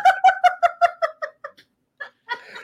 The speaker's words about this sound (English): Oh, my gosh. I love those two are going at it again. Pigeon pals.